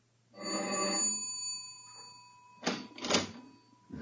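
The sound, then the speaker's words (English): The doorbell of a third-floor apartment in Haven Mews, London, is rung by police. It rings once, a bright buzzing chime lasting about a second, followed after a pause by two short, harsh clattering noises. A steady low hum runs underneath, and no one speaks. “It doesn't take long to race upstairs to a third floor apartment, ring the doorbell.”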